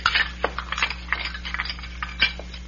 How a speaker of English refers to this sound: Might as well get some of these here dirty dishes out into the kitchen.